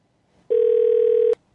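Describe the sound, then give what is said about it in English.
A single ringback tone from an outgoing phone call: one loud, steady electronic burst lasting under a second, heard alone with no talking. “That fucking Toys R Us is still ringing like a motherfucker, right?”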